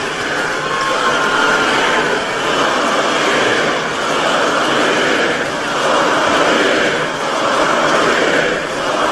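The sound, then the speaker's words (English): A large rally crowd in Battle Creek chants "four more years" in unison in support of the president, the dense roar of voices swelling and easing in a steady repeating rhythm, loud throughout with no single voice standing out. “The crowd would not stop. They just continued to show unfettered support and loyalty to the president”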